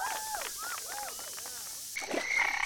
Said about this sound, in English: What the? A frog in my pants? That's just lovely.